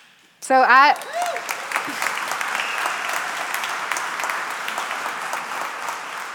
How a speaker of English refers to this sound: We got an elder who doesn't like it when we clap. it's for Jesus.